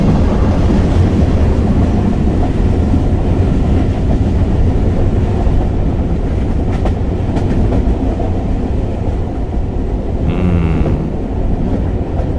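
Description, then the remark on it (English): A train rumbles steadily along the tracks, heard from inside a car with no windows, loud, with a dense low roar and wind noise throughout, occasional brief clanks and a faint squeal near the end. No one speaks. “Oh, now I'm on the train and there's no windows on this one car that I'm on, and the fresh air is just so delicious.”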